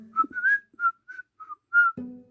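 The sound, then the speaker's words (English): Someone whistles a bright, cheerful little tune in a quick run of about seven short, clear notes, fairly loud, with no talking. A low thud comes right at the end. “And as he finished toy after toy, to delight the hearts of little children, he found himself growing so gay and happy that he could not refrain from singing and laughing and whistling all the day long.”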